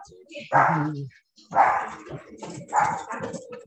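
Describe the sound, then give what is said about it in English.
Dogs bark in three loud bursts as they run, each a cluster of sharp woofs with brief pauses between, plus some shuffling movement underneath. “What are you guys running and barking at, huh?”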